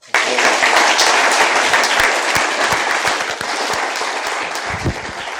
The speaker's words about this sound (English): So I think as citizens, we owe you a round of applause simply for writing it, but particularly for coming here and talking about it. Thank you.